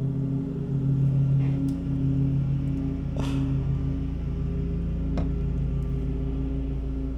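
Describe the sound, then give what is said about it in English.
A lawn mower cutting grass drones steadily and loudly throughout, a low rumbling hum with a buzzy tone that wavers slightly, plus a few brief clicks and scrapes along the way. “it's not that much grass right over here. He's got to go by quick.”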